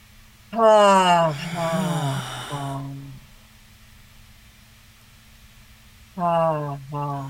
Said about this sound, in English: For the next two breaths, as you exhale, let out a little sound, a low rumble from down deep in the belly, breathing in swift through the nose.